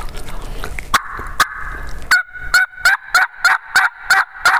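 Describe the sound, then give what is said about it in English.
A hand-operated turkey call produces a few scattered clucks, then a steady run of about eight sharp yelps in quick rhythm, fairly loud, with no talking. “So I'm just going to yelp a few times.”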